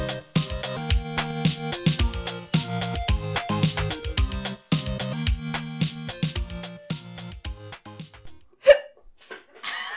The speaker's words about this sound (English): Just, like, start it and then hiccup. Are you going to be hiccuping this entire episode?